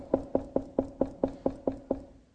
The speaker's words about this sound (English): if you heard the knock on the door at your home and you went and opened it